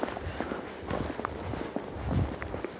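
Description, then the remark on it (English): Footsteps walk steadily at night toward a bird, a run of soft, irregular crunching steps over a constant low, airy industrial hum, with no voices. “I think if we keep walking forward, we're pretty close to where the bird is now.”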